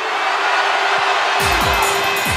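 A large crowd at a UK garage music show screams and cheers in a loud, continuous roar when asked to scream, with a few higher whoops rising out of the noise and some low thumps toward the end.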